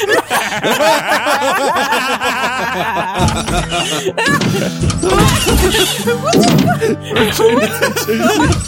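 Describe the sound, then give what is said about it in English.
A door thuds and bangs repeatedly in a rapid, chaotic series of loud knocks, mixed with overlapping voices and snickering laughter. “It's like the door gag from Scooby-Doo.”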